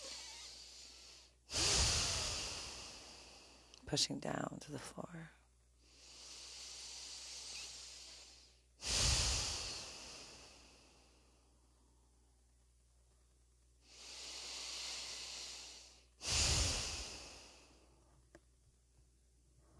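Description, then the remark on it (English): Slow, deep breaths drawn in through the stomach and pushed out as a breathing exercise, loud, about three full cycles with sharp airy rushes and quiet pauses between; a voice briefly speaks midway. “Breathing in through my stomach.”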